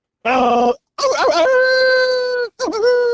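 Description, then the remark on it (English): A person imitates a howling dog with loud vocal howls: a short opening cry, a long wavering howl that settles into a steady held note, then a brief final yelp. “I'm a howling owl. I was going to say. The dog. I'm a dog.”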